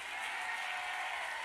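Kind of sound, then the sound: crowd, audience clapping hands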